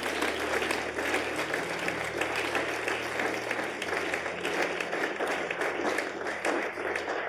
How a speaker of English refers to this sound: As he comes, let's receive him with a clap of hands.